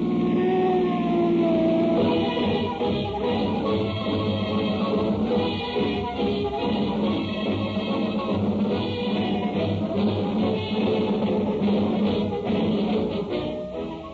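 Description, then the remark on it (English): Several police car sirens shriek together, loud, as the cars tear over the roads chasing fleeing convicts, their overlapping wailing tones layered into a dense, continuous blare that holds steady for the whole stretch with no voices. “On tonight's program, you will hear speeding automobiles, roaring engines, the shriek of sirens as police cars tear over the roads on the trail of fleeing convicts.”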